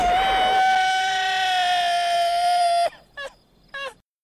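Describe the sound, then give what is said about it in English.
A man, the character Scorpio in a film, lets out a long, loud, sustained scream that holds a steady high pitch for nearly three seconds, then cuts off and is followed by two short, sharp cries. “So Scorpio screams.”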